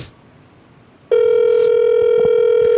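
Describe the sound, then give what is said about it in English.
After a moment of near silence, a loud, steady electronic telephone tone switches on and holds unbroken to the end, like a phone call ringing out unanswered. No one speaks. “It's rude to not pick up your phone for your friends.”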